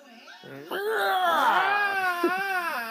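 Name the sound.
scream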